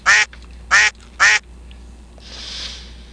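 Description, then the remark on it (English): A duck quacks three times in quick, evenly spaced bursts, loud, followed by a soft breathy hiss fading in and out. “it's National Wear Red Day and Lame Duck Day.”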